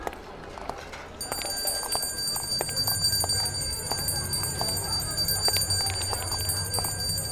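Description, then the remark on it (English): A hand bell rings out at a market after a brief pause, its bright metallic tone sustained and shimmering over a busy, clattering background with scattered knocks and bustle. “I don't know. Ring the bell again.”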